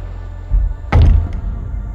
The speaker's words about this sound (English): So, after what felt like maybe 10 years, he slid the door open so slowly. And he walked in. Slides the door shut behind him.